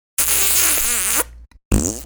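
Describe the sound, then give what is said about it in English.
A loud, buzzing raspberry blown with the lips, a wet mouth-made fart noise lasting about a second, then a brief pause and a second short sputtering burst. “Don't make the fart noise, please.”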